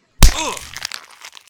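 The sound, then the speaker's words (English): A loud, sharp crack of a man's literal glass jaw shattering as the whole bottom of his face flies off, followed by a second or so of scattered tinkling fragments that quickly fade. No voices. “It's a literal glass jaw. The whole bottom of his face just flies off.”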